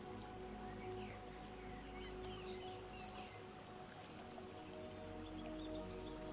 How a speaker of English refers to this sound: Perhaps you hear that just small, gentle sound of breeze. Leaves moving.